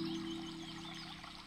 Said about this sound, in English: This is an opportunity to dive into Ujjayi breath, ocean sound of breath.